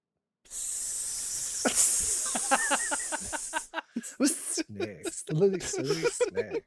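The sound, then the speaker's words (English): A person makes a long, steady, loud snake-like hiss for about three seconds, followed by voices talking and laughing. “Snakes.”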